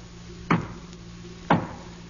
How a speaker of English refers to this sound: That knock.